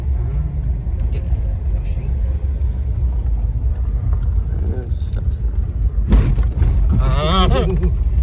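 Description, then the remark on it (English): Steady low rumble of cars on a road fills the background, with a louder passing whoosh near the end as someone walking up a hill through the bush talks over it. “There's all the cars right there.”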